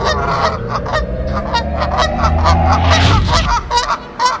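A flock of geese honks loudly and continuously, harsh nasal calls overlapping in a rapid, uneven stream with no speech.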